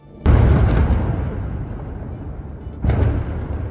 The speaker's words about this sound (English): Explosions could be heard as flares lit up the sky.